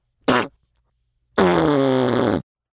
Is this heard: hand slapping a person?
no